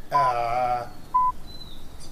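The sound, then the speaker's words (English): A bird call, named as the Stultus arvum, 'the Don Brash bird': a loud, raspy squawk lasting under a second, followed by a couple of short, thin chirps and a faint rising whistle, with no voices. “And there's the bird.”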